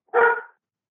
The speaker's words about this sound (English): You hear a dog bark in the distance.